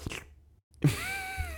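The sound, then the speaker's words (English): A person imitates a cat licking itself with wet mouth noises: a short burst, a brief pause, then a longer, louder stretch of rasping, slurping sound with faint whistly tones. “I felt like more like a lizard than a cat doing that.”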